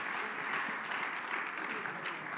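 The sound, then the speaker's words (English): An audience claps their hands in praise of a loving God. A steady, dense wash of applause, many overlapping claps blending into a continuous bright patter at an even, fairly loud level, with no one speaking. “I wish you'd clap your hands, everybody, if you have a God that loves you that much.”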